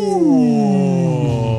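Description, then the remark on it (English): A single voice sings a sustained, rich 'ooh' that slides steadily downward in pitch, mimicking the THX deep-note cinema-intro swell. Loud, held for under two seconds. “Are you doing like the THX sound effects?”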